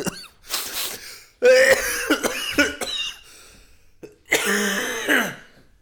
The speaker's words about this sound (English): Cough sounds really bad.